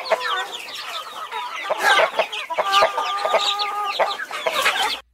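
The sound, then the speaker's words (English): Chickens cluck continuously, a dense overlapping chorus of clucks and drawn-out tonal calls, fairly loud, with no talking, running steadily for about five seconds before stopping abruptly. “So I'm going to play two clips of chicken sounds, and I want you to tell me which one's the happy chickens and which one is the sad chicken.”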